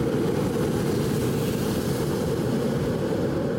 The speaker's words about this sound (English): I hope you got that. There was a jet going just as I was saying what it was.